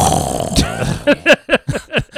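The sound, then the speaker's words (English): A goofy bomb sound effect that comes out more like a fart: a rumbling burst followed by about six quick, loud, rhythmic blurts, with no talking. “That shit sound like a fart.”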